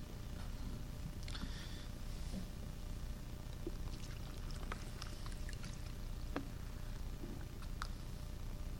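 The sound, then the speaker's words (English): Water pours steadily into a cup, a soft continuous splashing with faint clinks and drips scattered through it, fairly quiet, with no one talking. “Try to bring me another cup. Maybe we can find it.”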